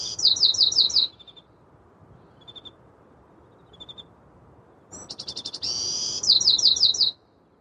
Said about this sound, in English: There it is, the first song of the day, and maybe the last cricket of the night.